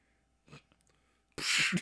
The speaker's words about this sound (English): He coughed.